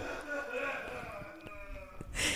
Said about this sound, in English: You keep sniffing?